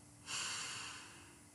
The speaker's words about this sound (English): And we're going to do six breaths all together. Here it goes. Get comfy. Don't move a muscle. Here we go. Breathing in.